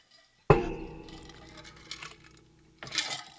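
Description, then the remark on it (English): Glasses clink together in a toast with a sharp, bright ring that lingers and fades, followed a couple of seconds later by a second, softer clinking rattle. “To bulls, fucking cows. Cheers.”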